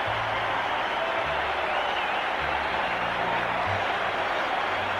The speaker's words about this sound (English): And you can hear the applause here at Maple Leaf Gardens for Borje Salming. Many are standing.